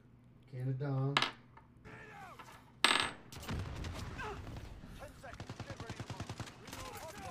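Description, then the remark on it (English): Video game combat: a couple of sharp bangs, like a flashbang going off, then a long rapid spray of gunfire crackling steadily, with brief voices mixed into the game sound. “Flashbang. Spray and pray.”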